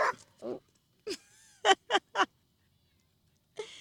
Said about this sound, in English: And yeah, that was, I don't know, a brown dog saying hi.